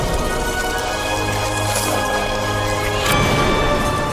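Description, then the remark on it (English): A bell is struck hard, its layered metallic tones ringing steadily over a dense, hissing wash like rain, with a sharp crashing hit partway through that brightens the sound. “Cutting quickly between broken beads, striking the bell with force.”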